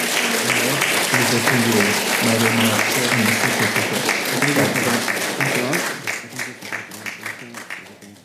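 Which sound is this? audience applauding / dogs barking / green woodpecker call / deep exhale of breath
audience applauding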